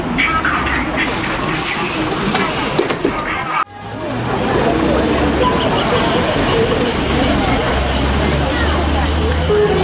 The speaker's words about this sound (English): Oh, there's the bus. Gotta go.